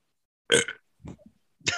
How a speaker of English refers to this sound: That was a lot of buildup for that burp. I know. That was a burp, by the way.